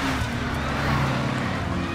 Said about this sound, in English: Who is that? More police? No. It seems like news vans. Oh, that's what we need. Reporters.